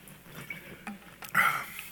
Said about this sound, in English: So that's why I brought my water bottle up, which I should probably use.